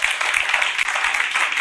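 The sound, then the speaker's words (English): A church audience applauds the church leaders steadily, many hands clapping together in a dense, continuous wash of bright, crackling claps with no pauses, fairly loud throughout. “I want us to clap for all the leaders as well.”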